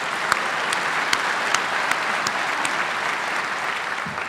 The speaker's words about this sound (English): We can clap for that, too.